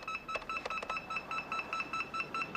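Someone punches a combination into the alarm keypad of Robin Masters' car: a quick, steady run of short, high-pitched electronic beeps, about a dozen, one per key press, with no voices.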